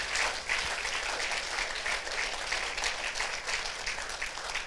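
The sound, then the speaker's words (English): A crowd gives the presenters a round of applause, steadily, a dense wash of many hands clapping at an even, sustained level throughout with no break, no voices rising above it. “And why don't you just give these guys a round of applause.”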